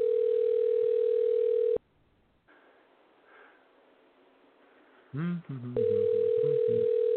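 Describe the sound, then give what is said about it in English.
A phone line rings back with a steady electronic tone, a pause of a few seconds, then the tone again, with a brief muffled voice just before the second ring, as someone makes a phone call to see if she is awake. “Well, gotta make a phone call, see if she's awake,”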